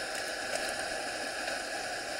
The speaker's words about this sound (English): All right, now, they do say that there are times, obviously, when orcas aren't around. So you're listening, and all you hear is water, and it sounded like it was raining.